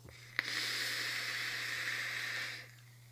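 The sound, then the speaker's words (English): A steady, airy hiss of breath drawn through a vape device set to half airflow lasts about two seconds and then stops. It's fairly loud over a low background hum, with no talking. “Still airy, isn't it?”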